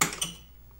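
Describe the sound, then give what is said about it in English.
Two quick, sharp plastic clicks as an eject button is pressed and a mechanism releases, followed by a brief fading rattle and quiet. No one speaks. “All right, let's push eject.”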